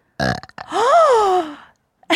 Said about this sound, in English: Let's burp together next time. Yeah, I wish you do one on command? Save some. No. I'm ready.